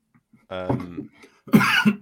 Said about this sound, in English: sorry, I'm not laughing, I'm coughing. No. I know, I saw you nearly choke on you, whatever you were drinking.